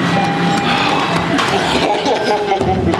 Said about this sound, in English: Just go to the subway, whichever train's in the station. Just get on! Come on, close, come please. On, close, close, close.